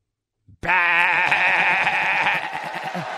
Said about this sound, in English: I'm just saying I love that new GOAT drop.